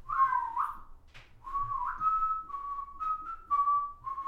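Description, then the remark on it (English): A person whistles a slow, eerie tune, clear sustained notes gliding and stepping between pitches in an unbroken melodic phrase, with no talking over it. “What are you so good at whistling for?”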